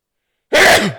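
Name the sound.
loud sneeze into microphone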